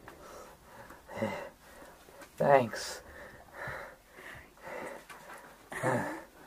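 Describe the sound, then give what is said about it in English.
A person pants heavily, with a series of loud, rough huffing breaths and gasps at an uneven rhythm, and a brief spoken word among them. “Just heavy breathing for 2 seconds.”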